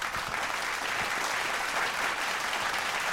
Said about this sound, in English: Let's clap. Let's clap that up.